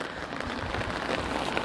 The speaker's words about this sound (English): There's no shit, it's raining.